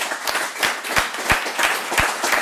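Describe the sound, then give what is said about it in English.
Loud, steady audience applause: a dense wash of many hands clapping, with a few sharper claps standing out at a regular beat throughout. “Make some noise for that.”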